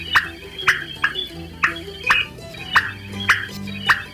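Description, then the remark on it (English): A female common pauraque (Nyctidromus albicollis) gives a series of sharp whip calls, about eight short emphatic notes repeated roughly every half second, clear against a quiet night background. “And the whip call of a female.”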